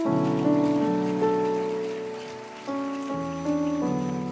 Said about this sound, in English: Stop clapping.